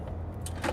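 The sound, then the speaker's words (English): A quick mechanical clunk of car door locks unlocking, a couple of short clicks in close succession over the low hum of a car interior, with no talking. “She just unlocked the car.”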